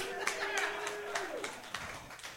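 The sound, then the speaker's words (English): Light, scattered audience clapping: a handful of sharp, uneven claps spaced out over a couple of seconds rather than a full round of applause, with faint voices and a thin sustained tone underneath. “Because hand jobs, round of applause, who here has ever given or received a hand job in this room?”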